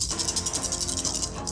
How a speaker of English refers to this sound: Yeah, roll me that. Roll me them dice.